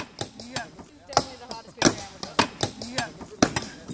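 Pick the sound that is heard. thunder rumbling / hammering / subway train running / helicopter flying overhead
hammering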